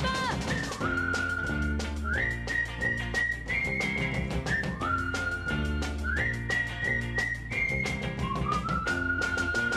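A bright, sustained whistled greeting call, a friends' whistle meaning hello, rises and holds in short repeating phrases, loud, over a bouncy band accompaniment with steady bass and percussion.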